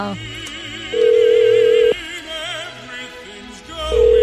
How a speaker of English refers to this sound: Here we go. Another phone call. It's ringing.